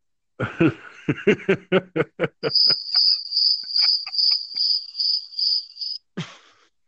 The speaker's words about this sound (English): I brought in the tank of crickets, by the way. They like the cheese too.